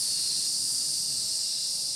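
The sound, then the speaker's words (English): A person makes a long, steady snake-like hiss, one continuous breathy sound lasting about two seconds at an even, moderate loudness, with no talking. “He's hissing. He can't help it.”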